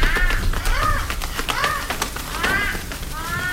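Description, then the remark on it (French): A flock of black birds circling over a village in the evening caws repeatedly, harsh overlapping calls rising and falling over a steady rushing background, loud with no pauses between the cries. “Ce soir-là, un vol d'oiseaux noirs commença à tourner au-dessus du village.”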